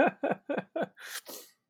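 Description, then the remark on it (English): A sneeze, fairly quiet: four quick, rhythmic voiced catches of breath build up, then release into two hissy, breathy bursts, with no talking. “Sorry, I sneezed.”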